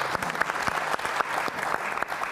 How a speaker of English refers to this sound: I think a round of applause really for that man here, giving it someone. Thank you.